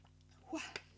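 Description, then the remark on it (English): A single slurping sip of water, lasting about a fifth of a second, followed by a quick click-like swallow, with no talking and a quiet background. “Just a sip of water.”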